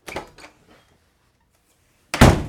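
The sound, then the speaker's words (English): A front door, which no longer self-locks, is opened with a short rattle of the latch, followed by a pause, then swung shut with a loud thud. No one speaks. “OK then, what about the front door?”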